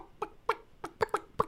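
A voice imitates a hen's clucking: six short, throaty clucks in a quick, uneven run, fairly quiet, with nothing else around them.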